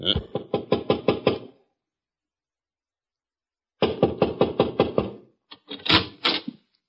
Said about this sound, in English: Want me to knock? Sure.